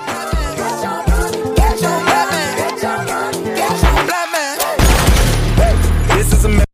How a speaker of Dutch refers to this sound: Nou, jullie hoorden daar de geweerschoten.